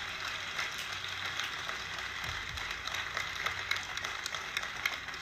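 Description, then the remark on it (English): A crowd applauds steadily, a dense crackle of many hands clapping at once that holds an even, moderate loudness from start to finish with no voices over it. “Yeah, all of that is worth definitely applauding for.”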